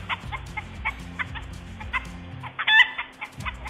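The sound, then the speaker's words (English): Chickens cluck loudly and agitatedly in alarm, a rapid run of sharp repeated calls with one louder squawking burst near the end, with no talking. “What they do is make a really loud noise and hope someone comes to help and flap around and peck the fox and hope it runs off.”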